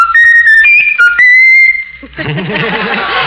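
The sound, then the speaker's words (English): A pet bird whistles a short tune of clear, shifting tonal notes, stepping between pitches for about two seconds, then breaks off as a voice starts talking. “Is that the bird doing that? Raffles, whistle your favorite tune.”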